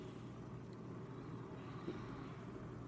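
A video game stock car engine, a number 9 Napa Auto Parts Chevrolet (basically a Chase Elliott car) in the NASCAR Roblox Cup Series on Roblox, drones steadily at a constant pitch for a few seconds, a continuous low, rumbling roar with no talking over it.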